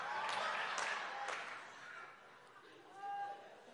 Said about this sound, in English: All right, that's a problem, ain't it? You trying to clap on 2 and 4 and it won't work.